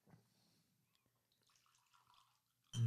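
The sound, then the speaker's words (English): Breckenridge bourbon whiskey being poured into a glass: a faint, soft trickle and gurgle of liquid, cut off by a sudden loud, brief thump at the very end. “But before we do, let's go ahead and have some more of this Breckenridge bourbon whiskey.”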